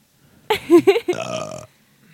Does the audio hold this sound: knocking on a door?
no